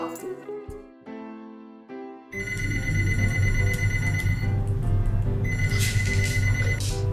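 A telephone rings with steady electronic tones, first in near silence, then continuing over a sudden swell of busy, noisy background sound; no one speaks. It is an incoming business call from a partner company, in a lesson on Japanese business phone manners.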